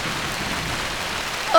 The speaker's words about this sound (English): Sorry, listener. I need to get my mic gear out of the rain. Gotta run!